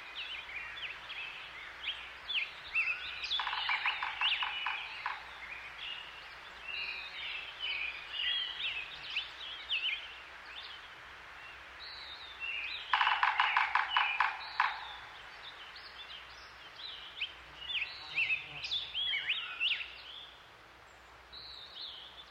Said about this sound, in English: Before we go, one last trek into the mountains of California, where each year at this time, birdsong and the drumming of woodpeckers can be heard as the snow melts and summer heads up the high Sierras.